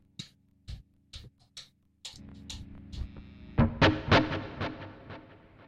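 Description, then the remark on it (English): A few muted, percussive string plucks open, then an electric guitar rings out through lots of reverb and a drive pedal, with sustained gritty chords swelling louder and washing together toward the end. “Okay, so we need a lot of reverb.”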